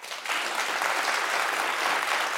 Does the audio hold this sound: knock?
no